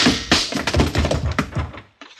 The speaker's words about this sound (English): Yeah, well, I kind of hate to hit a woman that way, but she wouldn't have missed with that rifle.